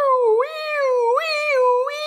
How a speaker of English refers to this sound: put on sirens. They're so faint, I feel like I can hear them outside my own house instead.